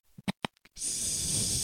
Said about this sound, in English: There goes the snake.